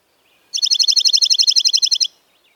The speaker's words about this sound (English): Junco songs are even and musical. It is also typically shorter than chipping sparrows, lasting up to 2 seconds.